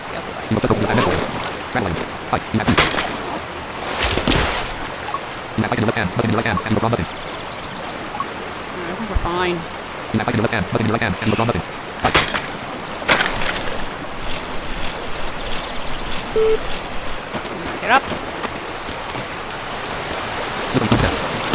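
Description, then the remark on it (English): A steady wash of rushing water from a waterfall by a river hisses throughout, constant, with brief voices and a few sharp knocks and rustles breaking over it. “That's what I'm listening for, the waterfall.”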